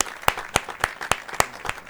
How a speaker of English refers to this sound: Ooh, claps. Yeah, like live claps and studio audiences. We just gave you the clap.